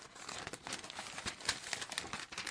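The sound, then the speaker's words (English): Continuous rustling and crinkling of newspaper pages being flipped and handled while searching for a note written in the paper, with irregular bursts of papery crackle and no voices. “Oh, where is it? Hang on a minute. I've written it down. I've written it down in the wrong paper.”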